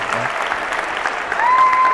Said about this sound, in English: Give her a round of applause. Okay, good job. Let's give her a real round of applause.